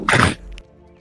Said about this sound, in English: I actually had a spit. You just spit on your floor? I spit in the can that I poured.